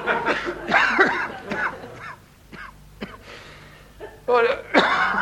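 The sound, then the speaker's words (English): A doctor's harsh, rasping cough erupts in several loud bursts, breaking off into short quiet pauses before another strained fit of hacking starts up again. “I'll say that's a nasty cough you got there, isn't it, Doctor?”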